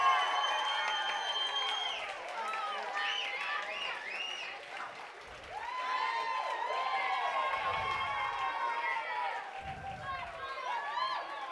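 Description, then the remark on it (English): A live crowd at Mister's cheers and shouts continuously as Isaiah McKenzie is brought on, with overlapping whoops, high yells and excited voices forming a loud, sustained roar with scattered applause. “What about this crowd, Isaiah?”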